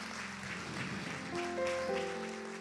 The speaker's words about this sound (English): Would you help me give Pastor Steve a round of applause? What an awesome job.